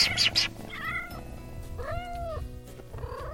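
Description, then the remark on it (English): A pet kitten, one of a pair adopted about two months earlier, gives a couple of thin, rising-and-falling meows, with a short burst of rustling at the start and soft background noise throughout. “Cats, this is radio. If you can purr or meow, that'd be...”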